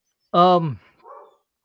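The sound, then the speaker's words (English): A dog gives one loud, sharp bark, followed by a softer, muffled yelp a moment later, with nothing else around it. “I don't know, my dogs are barking so much.”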